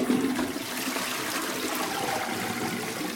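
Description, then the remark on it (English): A toilet flushes just after a dripping cistern was fixed by tightening a part, a steady rushing gush of water through the cistern that holds at an even level for a few seconds, with no voices. “There you go, sir. One dripping cistern fix, sir.”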